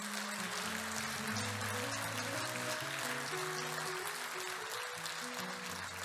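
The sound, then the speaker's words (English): An audience at an evening church service gives God a hand clap of praise, clapping steadily for several seconds, a dense, loud wash of clapping, while sustained keyboard or organ chords play underneath. “All right, give God a hand clap of praise tonight.”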